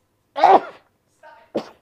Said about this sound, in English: Oh, I'm going to sneeze.